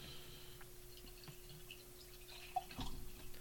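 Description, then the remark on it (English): Freshly opened beer, a New England IPA, is poured into a glass: quiet, starting with a few soft drips and clicks, then a short burst of louder splashing near the end, with no one talking. “We'll go with that size pour this time.”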